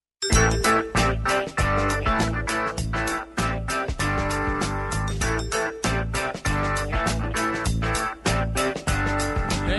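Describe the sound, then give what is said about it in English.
A loud, bright radio show music jingle signalling that the phone lines are open plays steadily for about ten seconds, with punchy rhythmic hits, chiming tones and dense full-band instrumentation, and no voices over it. “That phone troll music, which means all the lines are open, and you can get in now”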